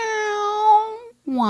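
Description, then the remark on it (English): A person imitates a pet cat's meow in two drawn-out cries: a long steady tone, a brief pause, then a lower, downward-sliding meow, fairly loud. “We're listening for meow.”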